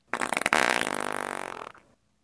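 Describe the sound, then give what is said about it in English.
A loud, sputtering fart sound effect lasting under two seconds, with a rapid buzzing flutter that starts abruptly and trails off, heard alone without any talking. “Yeah, I had to make sure that was not me, and it was a sound effect farting.”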